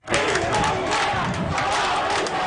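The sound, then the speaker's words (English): A large crowd of protesters marching in Cuba shouts anti-government chants together in a continuous, loud roar, sustained without pause throughout, with no single speaker standing out. “Videos posted on social media show people marching peacefully, shouting anti-government chants.”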